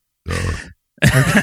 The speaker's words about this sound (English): Holy, you scared his dog. These burps will scare a dog, goddammit.